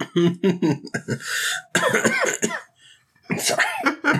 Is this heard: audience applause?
no